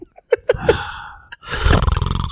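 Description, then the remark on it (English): A person lets out a loud, rough roar that imitates a lion, lasting about a second, after a few short vocal yelps. “That sounded like a lion.”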